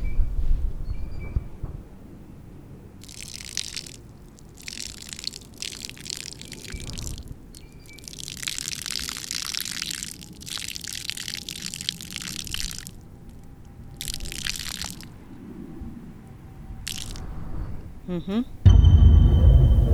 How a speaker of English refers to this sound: As an additional gesture of remembrance, if you've got any liquid nearby, I'll ask you to join me in pouring one out